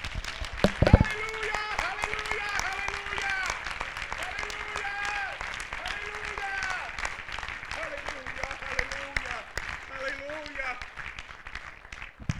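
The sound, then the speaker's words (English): An audience in a church claps steadily in sustained applause as a clap offering of praise to the Lord, a dense wash of hand claps with cheering and shouting voices rising over it, some loud whoops near the start. “Will you give the Lord a clap offering of praise?”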